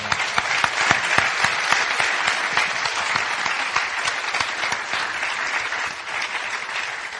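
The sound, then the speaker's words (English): A crowd applauds steadily, a dense, crackling wash of many hands clapping at an even, loud level that holds for several seconds without letting up, with no voices on top. “Could we just have a huge round of applause for our...”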